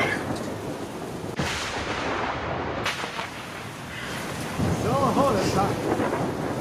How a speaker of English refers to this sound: Yes, it is the horrible storm that's happening. It's making it hard to hear.